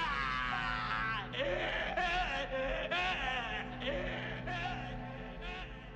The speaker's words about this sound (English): And, I mean, Loomis has the best scream as well. It's a great scream.